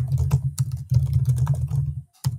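Rapid typing on a computer keyboard, a steady stream of clicking keystrokes with a few brief pauses and no voices, as someone types messages.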